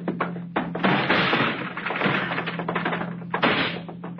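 A locked door is kicked in with several loud thuds, followed by a sustained rattling crash as it gives way, then one more heavy impact near the end.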